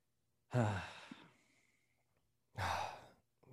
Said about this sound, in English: Why are you gasping?